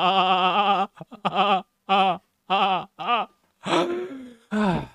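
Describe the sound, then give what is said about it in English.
A man's voice imitates a goat, letting out a run of wavering, nasal bleats in quick bursts, fairly loud, ending with a few rougher, strained cries. “It was getting pretty goat-like there”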